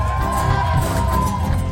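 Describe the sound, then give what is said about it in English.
A large live audience cheers and screams, a dense, steady roar of whoops and yells that stays loud and unbroken for the whole moment. “You can scream it.”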